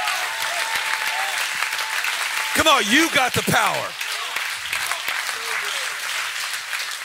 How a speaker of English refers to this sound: Give the Lord a clap and a shout like you got energy.